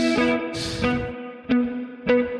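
Several plucked electric guitar notes ring out one after another, each with a sharp attack and a long, effect-laden sustain washed in reverb with about 60 milliseconds of pre-delay, played alone without any talking.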